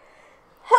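A quiet, breathy lead-in gives way to a sudden, loud sneeze brought on by spring allergies, filling the final moments and cut off abruptly.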